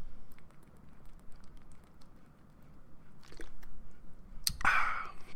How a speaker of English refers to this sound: Excuse me, I'm going to take a drink of water here.